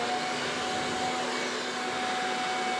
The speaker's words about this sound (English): Instead, my dad happened to have a modern alternative sitting in his garage. Hurricane power leaf blower.